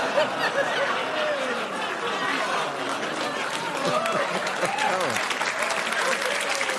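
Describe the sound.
Sustained audience applause fills the whole stretch, a dense wash of clapping with scattered voices, murmurs and a few chuckles mixed in, steady and fairly loud throughout.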